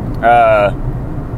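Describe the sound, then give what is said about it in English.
A steady low rumble of an old truck engine and road noise runs throughout, from an old truck with mismatched tires on an early morning ride into town, with a brief bright steady tone rising over it near the start. “We're coming to you from an early truck morning ride into town.”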